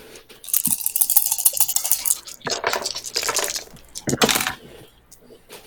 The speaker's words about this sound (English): So what you do is you take your current level of air, right? Okay. Which should be 5 for all of you. Yep. Roll 5 dice.